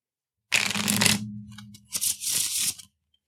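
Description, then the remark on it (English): A deck of cards being shuffled: a dense riffle burst, a few scattered clicks, then a second quick riffle and bridge, with no voices. “One thing I do want to point out, and luckily it didn't really come into effect, is that I'm not supposed to shuffle the deck in between exploration phases, combat phases.”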